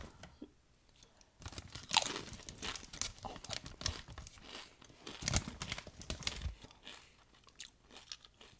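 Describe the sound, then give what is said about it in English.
Loud crunching as someone chews baked barbecue chips, a steady run of irregular crisp bites for several seconds before it fades to quieter mouth sounds. No one speaks. “Chew it and swallow it.”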